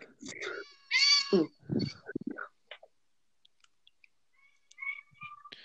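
A cat meows loudly, a drawn-out, rising call near the start followed by a couple of shorter chirpy sounds, then quiet clicks and faint rustling fill the remainder.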